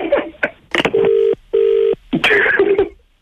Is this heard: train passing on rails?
no